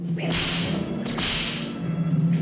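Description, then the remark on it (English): Sharp whip cracks snap out loudly, about three in quick succession with a swishing rush around each, over a steady low hum and no voices. “Something involving a leather corset, a spiked collar, and whips.”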